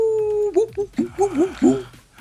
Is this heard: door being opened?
no